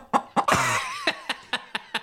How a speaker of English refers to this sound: Okay, I need to play this chicken drop one more time just for you know.